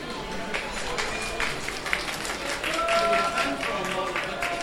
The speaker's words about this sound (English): And a round of the applause for the model, but most of the artists here seem very serious in taking the art for real.